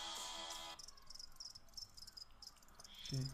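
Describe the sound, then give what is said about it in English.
Crickets chirp in a steady, rapid high-pitched trill, a classic quiet-night sound effect played alone, opening with a brief brighter burst and ending with a faint low tone. “Why is it crickets?”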